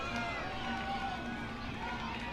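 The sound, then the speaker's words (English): A stadium crowd at a soccer match, reacting to a diving stop in the box, roars in a dense, steady wash of many voices, loud and continuous for the whole moment without any clear break or peak. “You hear the crowd reacting.”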